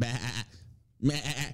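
A sheep bleats twice, fairly loud: one wavering baa, a short silence, then a second quavering bleat. No other sounds or voices.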